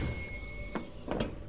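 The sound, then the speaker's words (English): A spaceship medical pod door opens on command with a steady mechanical hum carrying a thin high tone, broken by a quick swishing clunk and then a pair of hissing pneumatic bursts. “Ship, open the pod door. Opening pod door.”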